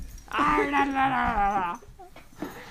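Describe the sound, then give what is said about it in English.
A dog lets out one long, high, excited whine that wavers and trembles in pitch for about a second and a half, loud, then trails off into quiet, as its owner appears dressed up as the dog's favorite toy. “He can't control himself.”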